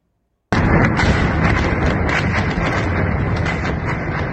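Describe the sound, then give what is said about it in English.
After a brief silence, a loud, dense barrage of explosions from a Russian missile strike erupts at a large apartment complex in Mykolaiv, southern Ukraine: repeated sharp blasts and cracks ride over a continuous heavy roar that stays loud to the end, with no talking. “New video just in shows a barrage of explosions during what is believed to be a Russian strike in southern Ukraine.”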